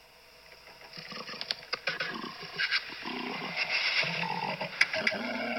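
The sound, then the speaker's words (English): A giraffe vocalizing in harsh, rasping bursts that grow louder, with sharp clicks and snorting accents over a noisy, growling texture, no talking. “And then they do, and I did not know that's actually what a giraffe sounds like.”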